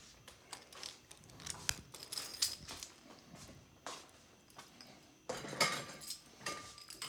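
Light metallic jingling and clinking, a series of small rattles and taps as keys are handled and set down on a nightstand, with faint rustling and no talking.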